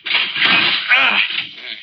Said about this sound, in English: This door's smashed. We'll have to pry it open. Maybe if we both pull on it. All right, we'll try.